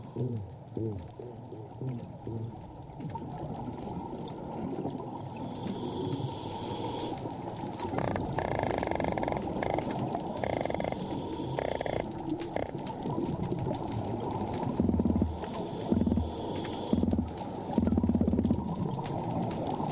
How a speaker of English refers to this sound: Here are some fish making some sounds in a coral reef area.